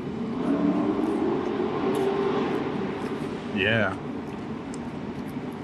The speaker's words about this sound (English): Motorcycles revving up.